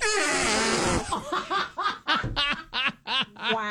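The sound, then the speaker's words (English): A loud, buzzy fart in played-back audio rips for about a second with a raspy, horn-like tone, then gives way to a string of rhythmic, breathy bursts of laughter. “That was not silent, but violent.”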